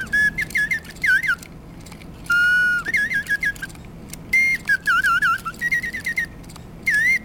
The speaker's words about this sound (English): The air flowing from these bellows is delivered to a small brass slide whistle, whose pitch and activation are controlled by the same cam system as the body of the oriole above.